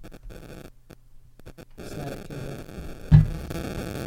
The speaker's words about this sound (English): Static.